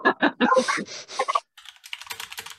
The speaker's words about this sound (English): Hold on a second. I'm sorry, I had to do something real quick. I'm just typing.